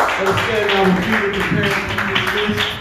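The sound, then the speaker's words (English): An audience gives the Lord a hand clap of praise after a prayer, a steady wash of many overlapping claps with voices calling out loudly over and through it the whole time. “Come on, let's give the Lord a mighty hand clap of praise.”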